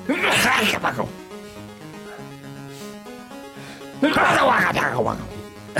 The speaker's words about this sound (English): Man, that's a weird sneeze sound you make there. It was like, sounds like a some kind of old man.